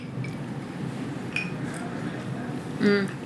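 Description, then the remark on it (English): Glasses clink together in a toast, a light ring followed by a brighter, louder clink near the end, set against a steady murmur of room noise and faint voices. “And a cheers, ladies. Oh, cheers.”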